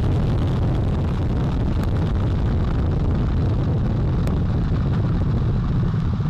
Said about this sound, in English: All four RS-25 engines on the core stage and two solid rocket boosters now propelling the vehicle at 128 miles per hour.